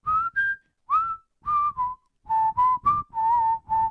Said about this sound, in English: There's a bit of a whistling part in that.